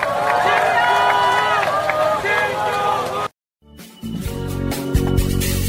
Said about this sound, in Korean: 우리 진교훈 후보에게 큰 박수를 부탁드립니다.